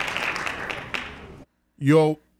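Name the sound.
hand clapping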